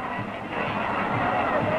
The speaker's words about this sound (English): Oh, yes, and listen to the kids in the crowd here, all specially invited for an all-free party on Walt Disney.